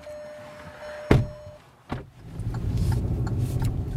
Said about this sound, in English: I pile into our car and head up the mountain.